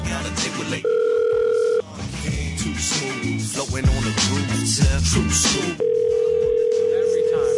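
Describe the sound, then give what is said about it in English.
A telephone rings in two steady electronic bursts, about a second long and then again near the end, loud over a busy background of voices and other sound. “Oh, here's the fucking phone every time.”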